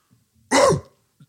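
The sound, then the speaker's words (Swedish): A person imitates a chihuahua's bark with a single short, sharp yap, loud and raspy with a quick pitch drop, standing alone in near silence. “Så bra skäller du.”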